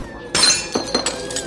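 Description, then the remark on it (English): A dropped glass brandy bottle smashes with a sharp crash, spilling over the floor, followed by a scatter of tinkling shards clinking and skittering for about a second. “Spilt all over the floor.”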